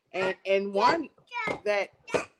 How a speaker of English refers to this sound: Sorry about the toddler in the background. I hope y'all can hear me. He had a lot to say.